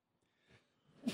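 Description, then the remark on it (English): A single loud sneeze: a brief, quiet intake builds for about a second before a sharp, explosive burst at the very end. “Yeah, it was a big boy sneeze.”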